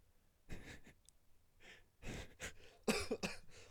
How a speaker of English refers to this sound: Fuck, dude, that's smoker's cough. Anybody else out there smoke?